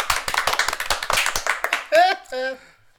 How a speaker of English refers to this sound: The crowd applauds.